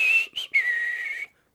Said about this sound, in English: The pants cleared his throat, or the underwear equivalent of a throat, and then started to quietly whistle to puncture the silence.